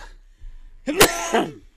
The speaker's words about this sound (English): So bless you. What? He sneezed.